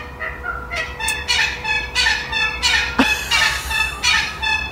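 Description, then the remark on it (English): A wattlebird calls, loud and insistent: a continuous run of harsh, throaty, gurgling notes repeating in quick bursts, with a single sharp knock partway through and no one speaking. “The wattle bird, that wattle bird has been haunting me for literally years.”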